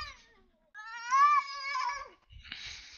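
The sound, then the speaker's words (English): Two cats meeting and fighting in a tense standoff: a long, wavering yowl rises and bends in pitch, followed by a harsh, breathy hiss, with no one speaking. “That's a little too hissy for me.”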